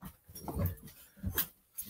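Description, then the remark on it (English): A dog pestering to be let out whimpers in a few short, uneven bursts, whiny and fairly soft, with quiet pauses between them and no one talking. “I think my dog wants me to let him out or something. He's pestering.”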